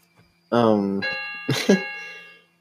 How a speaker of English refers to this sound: Oh my god, what are these freaking chimes that keep going off? They're clocks. How many damn clocks you got in there? A lot.